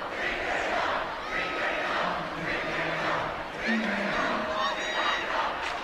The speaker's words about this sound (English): You can hear the Hellgate student section cheering on now.